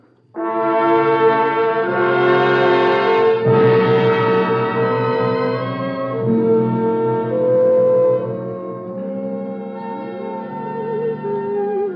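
A woman hums a slow, sustained tune with long held notes that glide between pitches, steady and fairly loud, with no talking over it; the humming is by the character Anne Rutledge in Norman Corwin's radio play The Girl Lincoln Loved on the Cavalcade of America.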